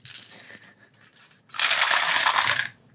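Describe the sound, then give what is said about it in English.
Dice clatter lightly as they're gathered up, then a loud rattling roll lasting about a second before it stops. No one speaks. “The temptation to just, like, instinctively mute DJ every time he goes to, like, pick up his dice.”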